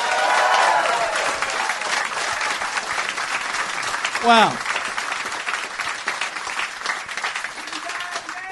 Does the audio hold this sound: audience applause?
yes